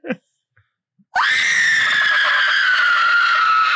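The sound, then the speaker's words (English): A loud, sustained human scream erupts after a brief quiet moment, piercing and held steady for over two seconds like a horror-movie shriek, unbroken; a person performing a scream of the kind they were hired to do for a film. “They needed more screams, and I was actually hired.”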